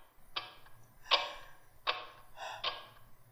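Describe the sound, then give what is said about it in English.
A clock ticks steadily, its crisp tick-tock beats falling about once every three-quarters of a second, with a faint low hum beneath and no voices. “Neither spoke, but lay silently listening to the ticking of the clock.”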